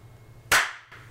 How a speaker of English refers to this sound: Oh, did we forget to clap the first time? Every time. No, I think you guys clapped.